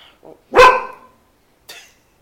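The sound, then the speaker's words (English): A single loud, sharp bark from the dog Parker, followed a second later by a shorter, quieter bark or yip, with a faint murmur just before. “Like, evidently, Parker did not like Alf either.”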